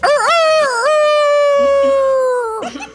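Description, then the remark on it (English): A person imitates a cockerel crowing, with a few quick wavering notes leading into one long, loud, held tone that drops away at the end, with no other sounds around it. “I thought you might like to hear my cockerel.”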